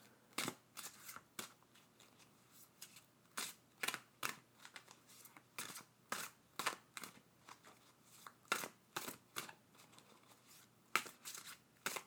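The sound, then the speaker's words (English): Tarot cards being shuffled in a steady series of quick, crisp riffling bursts, fairly quiet, with no voices during the shuffling. “Couple more shuffles and we're out.”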